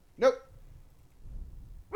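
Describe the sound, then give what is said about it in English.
A dog gives one sharp, loud bark, then a low rumble fills a short pause before a second bark begins right at the end. “My dog is freaking out.”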